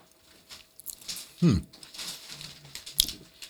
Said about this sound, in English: I don't usually get a lot of chips in there. Trying to pull away from the mic so you don't have to hear all this crunching. Oh, no. I'm screwed either way.